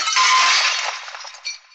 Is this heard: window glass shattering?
yes